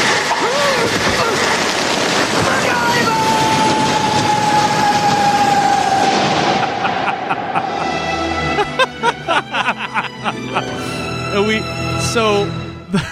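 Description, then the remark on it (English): In a scene from MacGyver, the villain Murdoch lets out a long, drawn-out scream that slowly falls in pitch as a rope pulls him down a mineshaft with a plummeting elevator car. It plays over a loud, dense rumble of grinding machinery, followed by a burst of metallic clanking and banging. “We just hear him scream MacGyver all the way down the elevator.”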